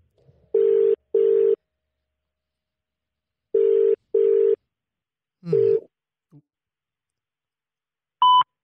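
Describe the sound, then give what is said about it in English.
An outgoing phone call's ringing tone sounds in two pairs of short, steady double rings separated by a pause, followed by a brief murmur and a higher electronic beep at the end. “We are connected and we are dialing. Hopefully this works. Oh, it's ringing.”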